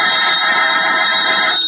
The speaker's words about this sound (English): The jangling of the phone again, like a sharp, sudden pain.